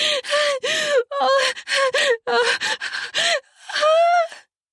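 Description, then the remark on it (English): A series of sharp, voiced gasps of horror as a fleeing person is tackled around the waist and falls heavily to the ground in a field. About eight quick, strained breaths come in a choppy rhythm, ending in one longer, higher, drawn-out gasp. “Oh, dear God! I gasped out in utter horror.”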